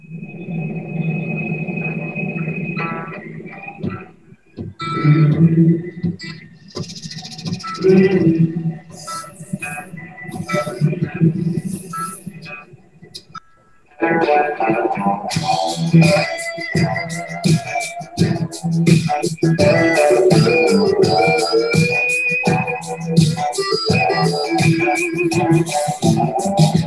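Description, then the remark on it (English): A blues music recording with no vocals: a sparser, softer opening with a long held tone, then the full band comes in louder and denser about halfway through and keeps a steady groove. “he's an award-winning blues artist who is performing at the Sono Collection Mall on the roof.”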